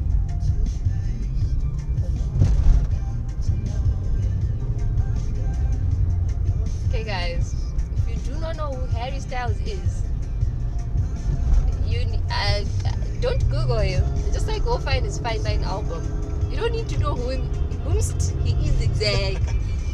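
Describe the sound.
A steady, deep engine rumble fills the cabin of a moving car, heard from inside, while music with a singing voice plays loudly over it throughout.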